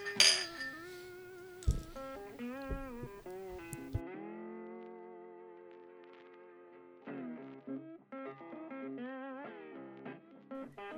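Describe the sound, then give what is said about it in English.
Glasses clink together a few times in a quick, bright toast, followed by sustained, wavering ringing tones that linger and then return with more chiming notes. “Here's to us solving the world's problems. Cheers. Cheers.”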